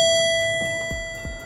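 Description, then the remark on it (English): An elevator chime rings as a single steady electronic tone that slowly fades as the doors close and the elevator goes up, with a few soft low mechanical thumps underneath and no voices. “Doors closing.”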